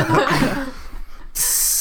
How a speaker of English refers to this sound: Drink this suspiciously bubbly it water. It's Alka-Seltzer, I swear. Cloudy water.